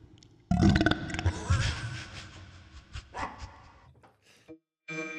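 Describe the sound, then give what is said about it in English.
A loud, drawn-out burp sound effect rumbles and gurgles for a few seconds, then trails off; a brief electronic tone follows at the very end. “Can we hear a burp?”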